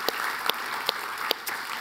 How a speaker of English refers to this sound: And so can you just give your staff, your team, everybody a round of applause? Thank you so, so, so much.